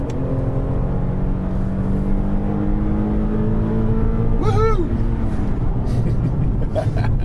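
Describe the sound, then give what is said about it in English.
A car engine, the engine from the 370Z, revs loudly and steadily as it accelerates, its pitch climbing gradually, with a brief higher-pitched whine sweeping through partway in and no talking. “It's the engine from the 370Z, isn't it, I think?”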